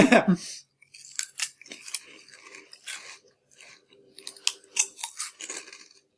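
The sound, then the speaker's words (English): Repeated crunching from people munching snacks, with sharp bursts coming in irregular bites and chews, and a faint murmur of voices underneath. “I'm so sorry to anyone listening to this, just hearing our crunches over and over.”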